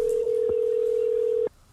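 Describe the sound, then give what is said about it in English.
A phone's outgoing ringing tone sounds as a single steady electronic burst, loud and even for about a second and a half before cutting off into quiet. “I really wish Stone Cold would answer his phone.”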